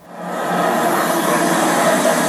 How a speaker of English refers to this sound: Why am I scared by the cars? God damn it. Why? Why?